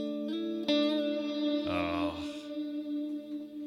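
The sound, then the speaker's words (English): A sustained chord on a Korean-made Burns Club Series electric guitar from 2000, played through a Hall of Fame reverb into a Dark Star pedal, rings out with washy reverb and gritty distortion, swelling into a harsher, buzzier passage midway before settling back into a long, shimmering decay. “Hall of Fame reverb into Dark Star.”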